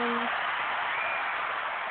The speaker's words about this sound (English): All that cheering is for the people in the chat room.